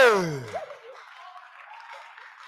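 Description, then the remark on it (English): A brief falling vocal sound at the start gives way to a steady wash of crowd clapping from many hands, moderately loud and continuing to the end. “The way you are clapping, you don't understand what you're saying.”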